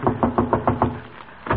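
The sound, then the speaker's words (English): A quick run of about six firm knocks on a wooden door, evenly spaced, then a short pause before one more knock. “Shall I knock, Doctor? Go ahead.”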